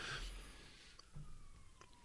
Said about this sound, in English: Just gonna edit out that police siren.